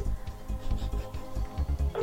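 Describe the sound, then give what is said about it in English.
A ringback tone heard down a phone line during a live broadcast while an outgoing call to Mark Clattenburg waits to connect, a steady electronic purr sounding in short repeated pulses, fairly quiet and with no one talking over it. “It's ringing.”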